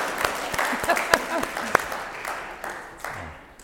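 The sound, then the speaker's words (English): An audience applauds in a dense wash of clapping that swells with sharp individual claps, then gradually thins and fades over a few seconds, with faint voices underneath. “I think we need to give her another round of applause.”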